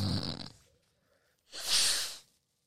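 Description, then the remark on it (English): A forceful sniff through the nose as a preventative allergy nasal spray is drawn up: a short breathy snort, a brief pause, then a longer, sharp hissing inhale. “Yo, she bought me this, like, allergy nose spray, but it's not, like, allergy medicine.”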